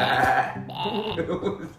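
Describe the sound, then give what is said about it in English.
A person imitates a sheep or goat with a single drawn-out, nasal "baa" bleat, loud, wavering slightly as it trails off. “As a shepherd separates his sheep from the goats. Bah. They all sound like that, right?”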